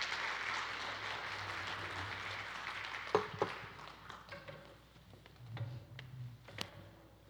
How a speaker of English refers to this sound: Will you clap for her as she comes up? Makes it a little less awkward.